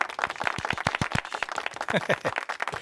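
A short burst of clapping from a small group welcoming a guest, the owner of Empire State Smoke Shop, quick irregular claps, with a voice talking over the applause partway through.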